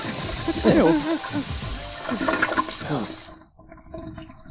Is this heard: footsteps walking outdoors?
no